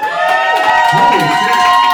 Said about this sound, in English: Actually, hold on. Cheer if you've actually heard us before.